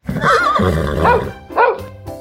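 A horse whinnies loudly, a quavering, wavering neigh lasting about two seconds, rising again in a second shrill burst before trailing off.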